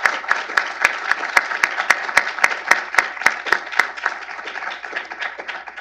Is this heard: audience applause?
yes